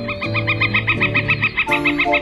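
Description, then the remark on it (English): A northern flicker calls in a rapid, even series of about a dozen bright, nasal notes, clear, with a low steady hum underneath and no voices. “Tree cavities excavated by northern flickers are bufflehead's number one choice for nesting.”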